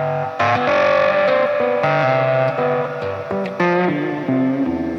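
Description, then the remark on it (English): Heavily processed electric guitar playing sustained notes with an octave effect on, long reverb and the neck volume rolled down, giving a doubled, metallic, ring-modulated tone and a long reverb tail, steady and fairly loud, with no voices. “And then what I like to do is octave on, long reverb, roll the neck volume down. Yeah. And get the like kind of ring mod.”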